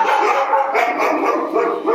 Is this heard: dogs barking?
yes